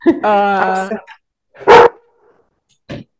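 A small dog barks at a passerby: a drawn-out, high yelping bark, then a sharp loud bark after a pause, and a brief final yip.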